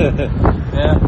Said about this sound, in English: But yeah, it's as everyone who's been here can probably guess, it's pretty windy. Yeah, we're out the front here. We're right on the seafront.